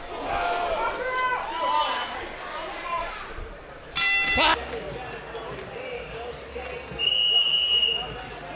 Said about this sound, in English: 10 seconds. Listen for the bell.